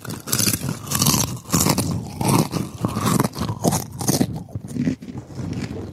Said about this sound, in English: I'm eating these chips and they're going into my...